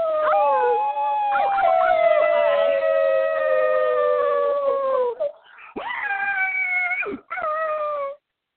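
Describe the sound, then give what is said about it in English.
Several people howl together like dogs, a long loud drawn-out howl lasting about five seconds, then a brief gap and two shorter rising howls, with no talking. “All right, we'll wake her up with howling.”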